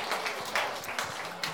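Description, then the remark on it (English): A short burst of applause from a small group, steady and moderately loud, with individual claps blurring together into a continuous patter. “Well, round of applause.”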